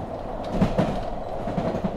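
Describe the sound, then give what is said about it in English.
A train rolls steadily along the tracks with a low rumble and paired clickety-clack beats as the wheels cross rail joints. It is moderately loud, with no voices. This is the overnight train from Paris to Nice in 1955, with Grace Kelly aboard. “5 days after winning her Oscar, Grace Kelly woke up aboard the overnight train from Paris to Nice.”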